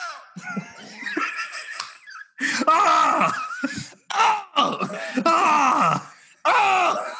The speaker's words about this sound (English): It's just 12 seconds. Let's do it again. "Able to mimic Nessie Amun's voice by recreating his mouth and vocal cords with a 3D printer. It allowed them to produce a single sound."